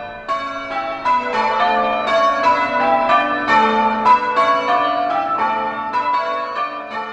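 Church bells ring out in a steady, overlapping peal, each strike blending into the lingering hum of the last. The sound is loud and continuous, with no voices.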